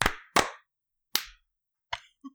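A few people clap together on a count of 3, 2, 1 as a team exercise but out of sync, giving five sharp, loud smacks spread unevenly over two seconds, with the last couple softer. No one speaks.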